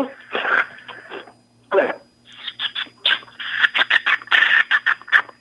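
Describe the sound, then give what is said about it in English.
After a brief spoken remark, a person imitates a finch, producing a quick string of short, high-pitched chirps and trills in an uneven, lively rhythm, fairly loud against a quiet background. “Okay, let me get the finch.”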